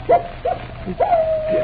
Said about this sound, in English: Captain Drummond, that howl is... It's the wolf dog.